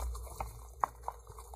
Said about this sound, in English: You guys clop, clop, clop on the cobblestone steps